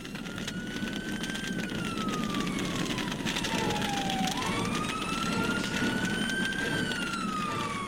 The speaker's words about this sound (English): I still follow fire engines, even as a very aged reporter. When you see a fire engine or hear a fire engine, you always know there is a story happening. There's always a story at the end of the fire engine route.